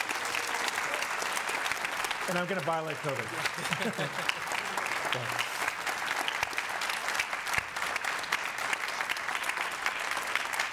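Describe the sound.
A church audience claps steadily for about ten seconds, a dense, even roar of applause welcoming a new campus pastor. Partway through, a man speaks a short line over the clapping.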